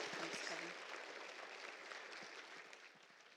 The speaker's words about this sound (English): So would you give them a round of applause, a big Journey Church round of applause?